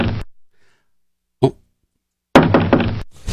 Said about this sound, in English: Someone's knocking. Yes. We need to talk about... Yes. We need to talk about that knocking.